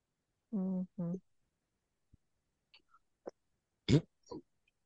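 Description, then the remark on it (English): Two quick, throaty burps come back to back, fairly loud, then a few faint clicks and short breathy mouth noises follow in near silence. “I burp.”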